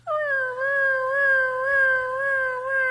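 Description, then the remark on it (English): A voice imitates a siren, holding one loud, continuous wailing note whose pitch wavers gently up and down for about three seconds, with a faint low hum underneath. “But without it, I can't fake a siren without reverb.”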